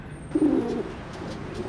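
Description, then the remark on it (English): A bird coos once on a flat rooftop, a low throaty warble that swells briefly and then trails off softly, over a faint outdoor background with no one speaking. “You fly above all this. Free as a bird.”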